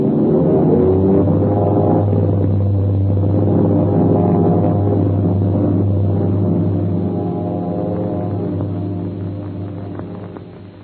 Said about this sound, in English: With a thundering bellow, four huge, slick airliners slip across the field of Shanghai. The great international race has started.